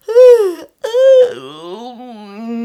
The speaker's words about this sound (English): So let's start with a good yawn stretch. Oh, maybe roll your shoulders a bit. Let the stretch move into your sides and your back. And let yourself yawn.